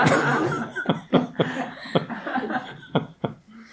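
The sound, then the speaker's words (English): A man coughs in a series of sharp, throaty bursts, about six irregularly spaced coughs, over a steady background hiss with no talking. “But when he's coughing, there he is again, he's coughing again.”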